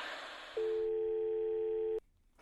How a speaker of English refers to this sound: Did you hear the way it just went to static at the end? Like it was almost like electromagnetic?